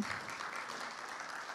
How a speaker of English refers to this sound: Yeah, give them a clap.